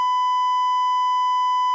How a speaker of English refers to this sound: But, man, you're going to have to do the beep. Tell me when. Right now.